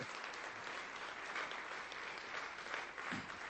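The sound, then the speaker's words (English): An audience bursts into sustained applause as a hand clap of praise to God, many hands clapping together in a dense, steady roar for a few seconds without any speech. “Now give God a hand clap of praise.”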